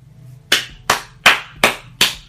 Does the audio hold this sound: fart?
no